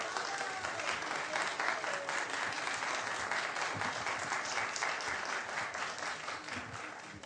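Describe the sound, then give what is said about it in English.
A room full of people at a public meeting breaks into sustained applause after a motion passes unanimously, dense, steady clapping that holds at an even loud level for several seconds, with faint voices mixed underneath. “So you all did the clapping and not the jazz hands when I can't throw you out anymore.”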